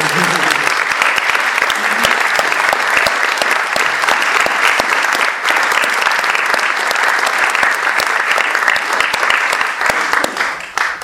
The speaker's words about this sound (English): But yeah, last but not least, my mother is sitting there at the back, who really deserves credit as a and producer. And deserves a round of applause.